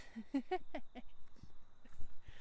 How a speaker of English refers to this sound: No, that's the yappy dog.